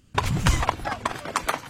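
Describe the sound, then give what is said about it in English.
Hooves of Justice the horse clip-clop in a loose, uneven rhythm, about six sharp knocks over a low rumbling background; no clear whinny stands out. “I thought Justice the horse was here.”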